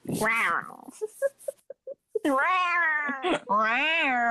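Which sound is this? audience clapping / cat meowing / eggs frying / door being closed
cat meowing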